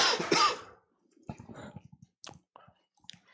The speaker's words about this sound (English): you coughed into the mic right on the intro